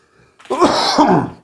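A single loud sneeze: a sharp, breathy burst of noise lasting about a second, heard on its own with no talking around it.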